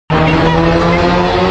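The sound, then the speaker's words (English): A car's tires squeal loudly as it peels away, the screech and roaring engine bursting in suddenly and holding steady for about a second and a half. “Tell your shorty, get the car, bro. We finna slide.”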